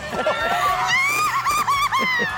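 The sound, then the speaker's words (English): High-pitched excited shrieks of surprise as dozens of a teacher's students and their moms photobomb her picture in front of Cinderella's castle at Disney, several voices overlapping in a loud, wavering burst that rises and trembles for about two seconds, with bustling crowd noise underneath. “you can just hear the excitement and how touched she is in her shrieks”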